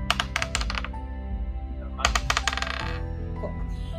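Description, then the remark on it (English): Dice are rolled for a flat skill check, clattering across a hard tabletop in two quick rattling bursts of sharp clicks, fairly loud, with a low background hum in between. “I don't like that dice today. We'll roll this one.”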